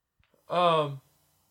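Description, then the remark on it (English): A single short, voiced yawn from one person, fairly loud, lasting about half a second with a slightly falling tone before cutting off into silence. “I'm doing a yawn.”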